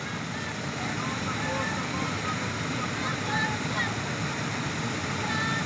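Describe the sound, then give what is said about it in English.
A waterfall roars in a steady, unbroken rush of falling water, a dense hiss that stays constant throughout, with faint higher tones flickering through it now and then. “Hear the sound of the fall.”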